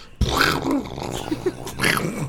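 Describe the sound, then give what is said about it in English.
A voice imitates a car stalling with a sputtering, growling burst of throaty noise, rising and falling in pitch with a few choppy coughs before a final strained rev. “What about a car stalling?”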